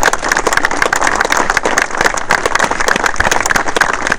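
A crowd applauds a football club's volunteers steadily, many hands clapping together in a dense, crackling roar that holds at a constant loudness for several seconds with no voices.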